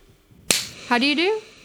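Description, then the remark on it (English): A single sharp, crisp slap of hands clapping together on mint leaves to bring out their flavor for a cucumber and mint drink, followed a moment later by a short wavering vocal exclamation from someone. “if you want the flavor of mint to come out, you have to slap each individual mint.”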